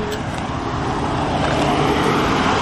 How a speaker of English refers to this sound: Woo! Cars!